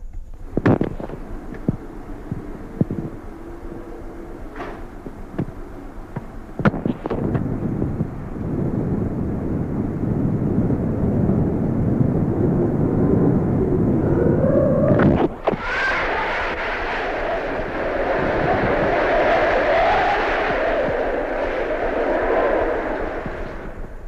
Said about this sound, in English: People are recording the sound of the wind on their personal tape recorders.